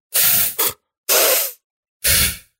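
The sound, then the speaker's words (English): A voice imitates sniffing with three loud, breathy hissing inhales, the first split into a quick double, separated by short silences. No one talks. “she sniffed twice and then said, I'd put like three Fs. And so then I did it.”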